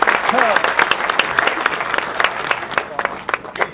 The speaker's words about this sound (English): let me give you a little applause before you start.